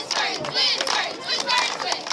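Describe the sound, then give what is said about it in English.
The Spartan Sparkles, a group of cheerleaders from Pleasant Valley High School in Bettendorf, Iowa, cheering: high-pitched voices shouting together, loud and continuous for about two seconds, with bright overlapping tones that rise and fall in pitch. “That's a group of spunky cheerleaders from Bettendorf, Iowa, who gave their community a reason to be grateful.”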